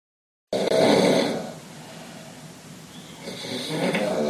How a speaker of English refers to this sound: I listen to it, and about three quarters of the way through, somebody else chimes in, and it also sounds like me. And they're both not me, so one of them's somebody else. But here's a clip of snoring at the open floor plan.